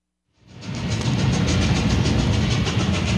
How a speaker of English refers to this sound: Ride this train to Roseburg, Oregon.